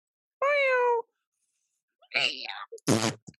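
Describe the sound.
A person imitates a cat with a flamethrower in Doha being run over: one drawn-out, wavering meow, a short silence, then a strangled yowl breaking into a harsh, rasping burst and a few quick sputters, loud.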